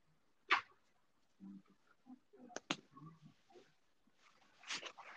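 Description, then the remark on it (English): A dog gives a few sharp barks as someone knocks at the door, separated by a couple of quick knock-like thuds and some scuffling movement, with no voices. “Oh, man, my dog.”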